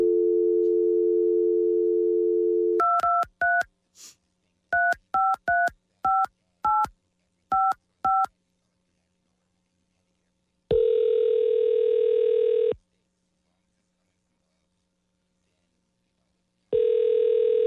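A steady phone dial tone gives way to a quick series of about ten touch-tone beeps as a phone call is placed, then a long ringing tone sounds twice with a pause between, clear with no voices.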